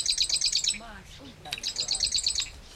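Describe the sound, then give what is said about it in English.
A marsh wren, a small bird about the size of a chickadee, sings two rapid, high-pitched rattling trills of quick repeated notes, separated by a brief pause with faint lower sounds underneath. “I've never seen a marsh wren, but I can hear it.”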